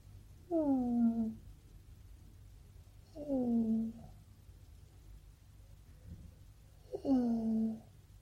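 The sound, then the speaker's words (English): A cat that does not purr lets out three short, whiny calls that slide downward in pitch, spaced a few seconds apart, with quiet background hum between them and no talking. “So yeah, he doesn't purr, but he does go.”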